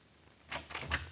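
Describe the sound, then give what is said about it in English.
A door is opened all the way with a short cluster of clicks and a rattle of the latch, moderately loud, with no voices. “Hey, okay, you open the door all the way.”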